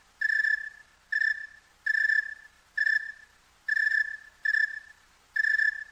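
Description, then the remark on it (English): A cricket chirps slowly and steadily on a cool night, about seven evenly spaced, clear chirps with short pauses between them, heard alone with no talking over it. “Now that's a cricket on a cold night or a cool night. Rather slow.”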